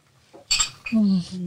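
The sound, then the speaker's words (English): Glasses clink together in a toast to a speaker's mother: one bright, ringing chime with a short shimmer, followed immediately by a voice humming or speaking over the fading ring. “We have a cheers to your mom. I'll cheers that too.”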